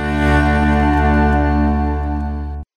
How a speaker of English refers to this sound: Sorry about the noise. My neighbour's sanding his deck.